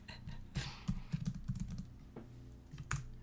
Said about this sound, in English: If you hear a lot of typing, that's Maggie doing my research for me.